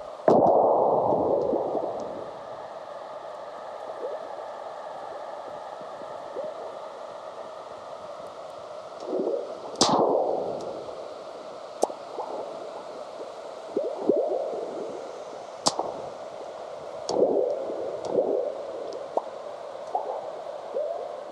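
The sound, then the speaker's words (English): Recordings of the Earth's natural low-frequency vibrations (rumblings, earthquakes and burps of ocean waves), sped up and pitch-shifted by seismologist John Bullitt, from his CD an album, form an eerie, droning hum broken by swelling whooshes and scattered sharp pops and cracks, heard alone with no talking. “But seismologist John Bullitt grabbed recordings of the Earth's natural low-frequency vibrations, sped them up, and shifted the pitch so the rumblings, earthquakes, and burps of ocean waves can be heard.”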